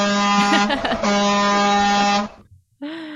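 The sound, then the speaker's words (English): A loud, sustained truck air horn blares for about two seconds with a brief warble in the middle, then cuts off before a second horn blast begins. “The honking will continue either. Until freedom improves.”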